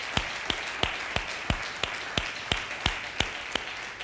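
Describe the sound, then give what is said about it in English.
A church audience claps hands during a sermon in a steady unison rhythm, roughly three sharp claps per second, over a continuous wash of crowd noise with no talking. “Somebody ought to clap their hands over that.”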